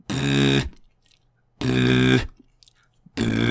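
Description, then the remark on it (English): A beatboxer's pitched lip buzz, made by buzzing the lips together while humming the same pitch, sounded as three loud, steady bursts of about half a second each, separated by short silences. Each one is a rich, buzzy low tone. “That is me buzzing my lips together to create a tone, as well as humming the same pitch, or you can buzz a pitch and then hum a different pitch and harmonize it.”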